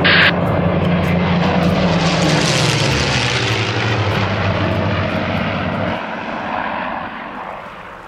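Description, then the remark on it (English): A propeller airplane comes in to land on Exotic Tiki Island in the Pacific Ocean, its loud droning engine holding steady and then easing down in pitch and volume as it settles, with no voices. “Please prepare for landing, and I'll have you relaxing on the main beach of Exotic Tiki Island shortly.”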